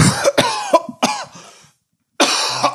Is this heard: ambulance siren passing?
no